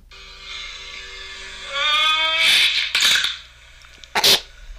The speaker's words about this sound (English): Listen, you're going to hear Madman Mars grumble a little bit. You hear TP scream a little bit. Yeah, but you'll know the neck break.